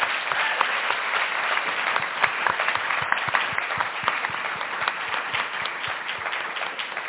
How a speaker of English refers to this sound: Can you please join me in giving them another round of applause?